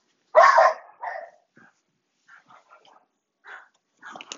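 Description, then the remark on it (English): Dogs bark: one loud, sharp bark followed by a shorter one, then scattered quieter yips and whimpers trailing off over the next few seconds. “These dogs are going crazy.”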